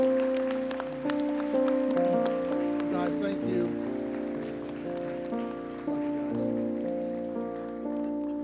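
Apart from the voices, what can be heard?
audience applause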